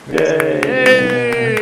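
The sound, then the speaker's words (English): Steady hand clapping, about seven quick claps in an even rhythm, moderately loud, over a sustained voiced cheer or hum. “Round of applause.”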